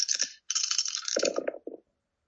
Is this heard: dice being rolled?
yes